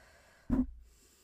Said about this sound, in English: let me drink some water because I feel like I'm talking super fast. Breathing exercises.